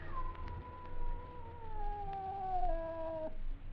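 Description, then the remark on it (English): A scrawny cat named Clara, by a stove, lets out one long, drawn-out yowl that wavers and slowly sinks in pitch over about three seconds before cutting off, with a low rumbling hum underneath. “It was a cat.”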